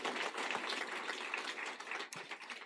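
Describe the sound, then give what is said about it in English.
Steady, dense applause from an audience for hospital staff, a continuous crackle of many hands clapping at an even loudness for a few seconds with no voices over it. “And yes, they do deserve lots and lots of rounds of applause.”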